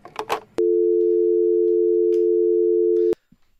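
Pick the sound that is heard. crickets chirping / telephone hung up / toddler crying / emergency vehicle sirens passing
telephone hung up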